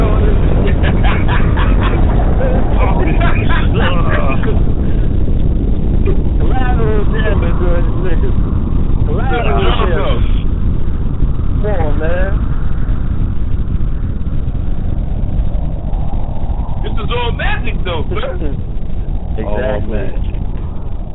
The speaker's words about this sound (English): Where's my drone at? Yeah. Oh, yeah. Let the drone go.